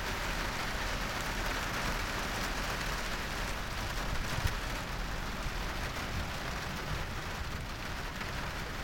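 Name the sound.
heavy rain pouring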